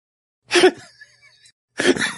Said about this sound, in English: And cough, apparently.